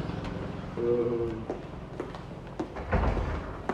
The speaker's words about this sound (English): Doors. Oh, hold the door. Yes, hold the door for me. Thank you.